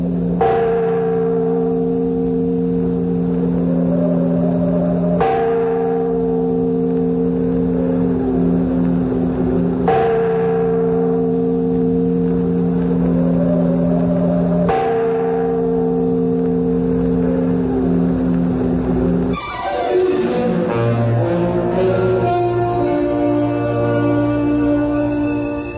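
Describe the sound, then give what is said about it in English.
A large tower bell in Venice, rung by pulling its bell cord, tolls loudly and slowly, four heavy strokes with a long humming ring between each, before the sound breaks into a denser clamor of overlapping, clanging tones. “Make that bell ring loud enough to wake the living as well as the dead.”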